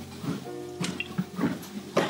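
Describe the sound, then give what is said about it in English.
Someone takes a drink of water, with a few wet sips and swallowing sounds spaced about half a second apart, fairly quiet and with no talking. “Take some more water here.”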